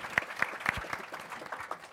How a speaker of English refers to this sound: Round of applause for them all. Thank you for bearing with me, but they all deserve to have all the things.